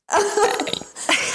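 A loud, deliberate burp, drawn out for about a second with a rough, voiced rasp, then a brief second gulping burst after a short break. No talking.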